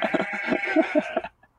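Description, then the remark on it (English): A goat bleats once in a long, wavering, nasal cry lasting over a second, loud, then cuts off into near silence. “That's a goat. We've got a chicken and a goat now. Yeah, that was a goat.”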